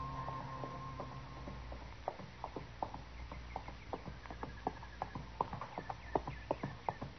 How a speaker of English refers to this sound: And just then I heard a horse coming along the trail, and I stepped back and waited. Whoever it was would pass within a few feet of me.